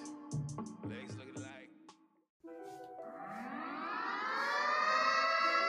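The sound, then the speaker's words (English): A siren sound effect wails loud, its pitch sweeping steadily upward and swelling over a few seconds, preceded by a brief burst of voices and choppy sounds, then a short silence; it opens the No Cap Bets segment. “It's time to hit the siren.”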